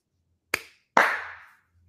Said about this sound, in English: We did it, boys. I think that deserves one clap.